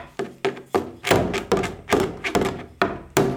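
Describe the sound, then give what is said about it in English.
A quick series of about a dozen hollow wooden thunks and taps struck on different parts of a shepherd's instrument, in an uneven rhythm, each knock shifting slightly in pitch and tone. “hitting different parts, which makes different sounds.”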